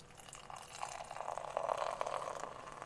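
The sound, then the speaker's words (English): A 5% German Pale Ale from Bohemian brewery in Midvale, Utah, pouring steadily into a glass, a continuous splashing gurgle that swells slightly midway, with no talking. “And the pour?”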